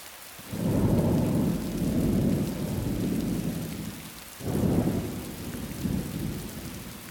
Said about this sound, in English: Now let's just listen to some rain sounds together. And now some thunder. Remember, we're sitting together listening to this.